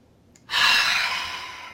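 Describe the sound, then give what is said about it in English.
A single deep, airy breath, inhaled through the nose and exhaled through the mouth in a breathing exercise called the Kung Fu breath, rising suddenly and trailing off slowly as a long, steady exhale. No one speaks. “Inhale through your nose. And exhale through your mouth. And again, and one more time.”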